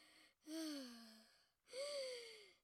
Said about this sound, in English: And breathe in and out through your nose. And notice how your body moves with your breath. Wow, it's actually moving. And just be with your breath and keep breathing for another 5 times.